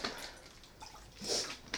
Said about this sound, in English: Let me get some water.